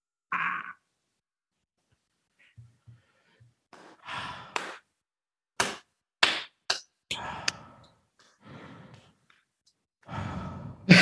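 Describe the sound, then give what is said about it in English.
Exaggerated heavy breathing from a voice: loud, theatrical sighs and breathy gasps come in uneven bursts, separated by short silences and a few faint clicks, with no talking. “The heavy breathing.”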